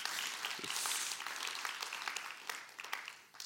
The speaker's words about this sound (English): Hey, you can clap. That's good.